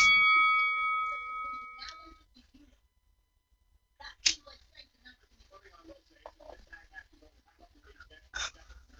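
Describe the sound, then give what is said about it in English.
A wrestling ring bell clangs once at the start of a WWE mixed tag match, its metallic tone ringing out for about two seconds before fading, followed by a few sharper clanks and scattered background noise with faint voices. “because I'm going to count you in, and you're going to start or unpause it as the bell rings.”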